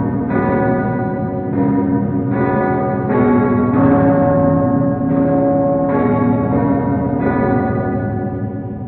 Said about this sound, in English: Above your heads, you hear a almost deafening sound of the bell tolling.